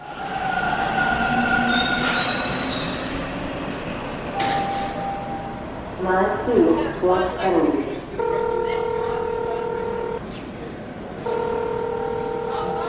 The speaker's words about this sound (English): I'm downstairs in Dufferin Station right now, just waiting for my train.